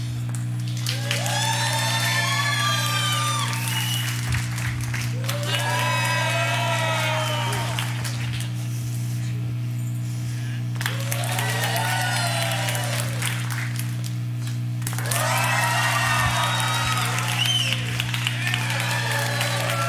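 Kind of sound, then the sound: crowd, audience cheering and applauding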